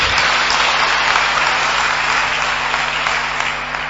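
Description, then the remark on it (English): A church audience claps for Jesus as it pledges to give, a dense, continuous wash of many hands applauding together at an even, loud level for the full few seconds, with a low hum running underneath. “If you are going to give, clap for Jesus.”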